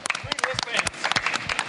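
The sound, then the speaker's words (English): A short burst of audience applause for the people wearing the green wristband, quick overlapping claps crackling steadily for under two seconds, with a voice briefly mixed in among them. “Big round of applause for the green wristband.”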